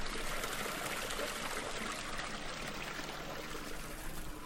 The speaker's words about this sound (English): and it's a nice quiet, apart from that water, it doesn't sound quiet, does it? But it's a quiet little spot here along this heritage trail, and that you could stop if you wanted to have a little sit and just listen to the sound of the water.